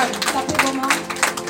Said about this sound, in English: Put your hands together for the Lord. Clap your hands.